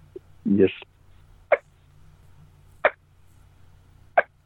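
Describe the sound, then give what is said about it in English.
Soft turkey hen yelps from a wingbone caller: a brief rising call at the start, then three short, sharp, quiet notes spaced evenly apart, with no talking. “just how softly I could make that cluck, seeing just how softly I could make that yelp, you know, just closing my eyes.”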